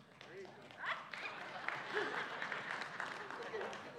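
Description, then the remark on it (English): An audience breaks into steady clapping, a dense, even patter of many hands that holds at a moderate level throughout, with scattered voices and laughter mixed into the applause. “I knew they'd clap.”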